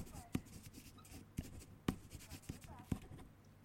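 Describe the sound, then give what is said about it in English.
A pen scratches across paper in short strokes as a person writes down a note, with a few sharper taps as it lifts and lands, fairly quiet, with faint rustling between strokes. “Okay, fine. I'm writing it.”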